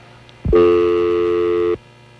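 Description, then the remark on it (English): A steady telephone dial tone hums for just over a second, loud, cutting in abruptly and stopping just as suddenly with quiet before and after. “Why'd I hear dial tone?”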